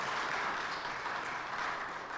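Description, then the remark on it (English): A crowd at a Christmas Eve service applauds steadily to welcome friends from Orland Park, many hands clapping together in a dense, continuous wash of sound at an even loudness throughout, with no voices. “And if you're part of the Christ Community Group here, would you just give them a round of applause, showing your appreciation for their being here tonight.”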